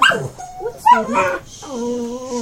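A puppy gives a few high, sharp yips followed by a drawn-out, wavering whimper, thin and plaintive, with short pauses between the cries.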